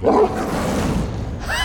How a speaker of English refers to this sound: Three gigantic dog's heads lunged out from the bars, gnashing razor-sharp teeth and spraying red-hot spittle into the air.